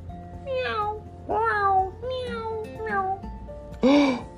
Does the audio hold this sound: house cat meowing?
yes